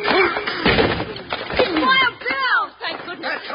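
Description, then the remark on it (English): The door of the Banner office is rammed open with heavy shoulder blows: a few loud, dull thuds and a cracking burst of wood, with excited voices shouting over the impacts. “Put your shoulder to the door, Jingles.”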